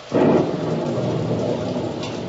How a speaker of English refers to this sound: Squall engulfed us now. The rain was blinding when one couldn't tell where it ended and the ocean began.